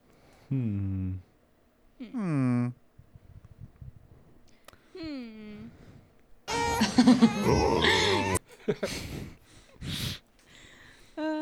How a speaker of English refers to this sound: Okay. Was all right, we got dog.